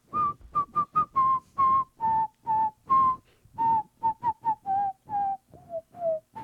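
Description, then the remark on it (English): A person whistles a bright, bouncy tune, with short clipped notes in quick succession, some held a little longer, the melody stepping gradually downward toward the end. “I guess I got to start whistling.”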